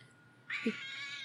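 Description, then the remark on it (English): A single fairly loud meow from a cat sitting on a person's lap, rising sharply then holding as a drawn-out, slightly strained call against a quiet background. “Yes, Junior is on my lap.”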